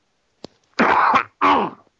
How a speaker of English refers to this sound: You're going to have to edit something out because I have to cough. I'm fighting a cold.